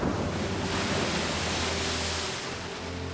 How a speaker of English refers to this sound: And at this point, it's a race against time to try to get her out so that she can spend her last moments with her family, see the stars at night one time, and hear the sound of the ocean at least one time before she dies.